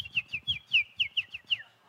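A bird chirps in a quick, steady series of about ten bright, sweeping notes, clear, with a low rumble of background noise beneath and no voices.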